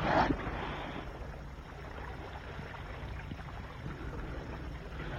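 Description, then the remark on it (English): A boat sits out on the water, a steady low rumble and wash of water noise running throughout, with a brief sharp knock right at the start. No one speaks. “Hey, it's 11 and I have to pilot this boat back to harbor.”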